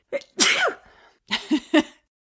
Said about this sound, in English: Sorry, I have to sneeze.